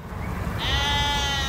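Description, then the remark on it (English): A single sheep bleat, from the countryside of Marple Bridge near Manchester, rises out of a low rumbling background and holds for about a second. It is a wavering, nasal cry with strong harmonics that stays fairly loud to the end. “Think green rolling hills, sheep frolicking in fields and serene canals.”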